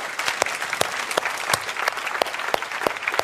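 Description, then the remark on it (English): A church audience applauds steadily for new believers who have declared Jesus Christ their Savior, a dense wash of many hands clapping at once with sharper individual claps standing out, holding an even loudness for a few seconds without any voices. “Let's clap for our new brothers and sisters in Christ.”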